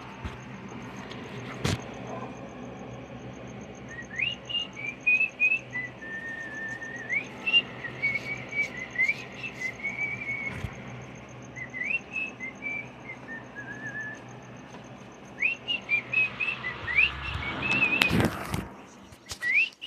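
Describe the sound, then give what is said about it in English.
A pet bird whistles a series of bright, warbling phrases, with sliding melodic notes repeating over about twenty seconds against a low background hum, ending in a burst of chirps. “Here you go, sweetie. Sweetie bird.”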